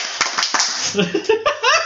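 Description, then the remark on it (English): A few sharp, irregular hand claps cut through a busy wash of voices and laughter, each one a quick bright smack. “You clapped.”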